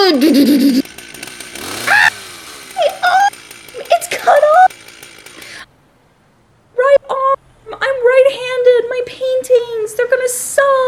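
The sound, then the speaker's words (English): A voice imitates a chainsaw revving, buzzing and rising in loud, wavering bursts, then a brief silence before a second, longer stretch of sputtering, droning revs. “I chainsaw your arms off.”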